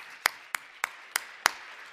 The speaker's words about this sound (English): Clap.